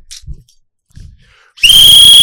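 After a few soft, low knocks, a loud, shrill whistle blast starts abruptly and holds steady at full strength through the end, piercing and close.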